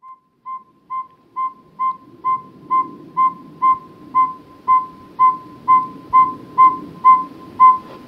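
A northern saw-whet owl gives a steady series of short, high whistled toots, about two per second, each note clear and even over a faint low rumble.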